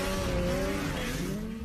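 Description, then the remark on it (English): A snowmobile with a Rotax engine on the Rev Gen 4 platform roars loudly, a sustained buzzing whine that sags slightly in pitch over a couple of seconds, with no voices present. “The unparalleled power of a Rotax engine.”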